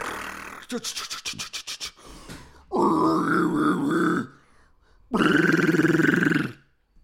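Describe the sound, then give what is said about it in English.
A voice does a rapid cheek-flapping, sputtering burst, then two long, loud, guttural death metal growls with a harsh, rumbling low tone, separated by short pauses. “The cheek flap death metal growl.”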